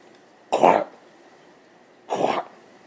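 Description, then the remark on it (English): A dog, bracing her legs out to support her weight as she struggles for air, hacks out two thick, wet coughs, each a short harsh burst, separated by a pause of over a second. Fairly loud, with no talking. “surveying us from the floor, keeping a careful eye out to see if any scraps of food fell, lurched forward and started hacking deeply, bracing her legs out to support her weight as she struggled to find air between the thick, wet coughs.”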